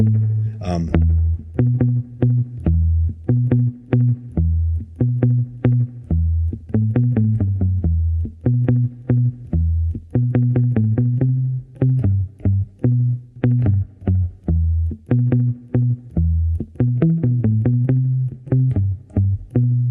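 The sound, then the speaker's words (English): A palm-muted electric guitar is flat-picked with a pick held straight against the string, at no angle and without scrape, in a steady, chugging rhythm of short, punchy low notes with a touch of spring reverb, played fairly loud for about twenty seconds with no talking. “I am literally holding it straight against the string and I'm palm muting with a little bit of spring reverb.”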